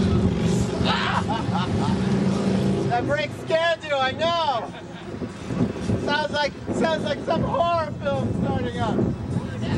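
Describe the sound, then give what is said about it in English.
A bicycle brake squeals in shrill, wavering bursts, a few times over several seconds, against a steady rumble of wind and riding noise. “Sounds like someone's gonna crash into me. It's only my brake.”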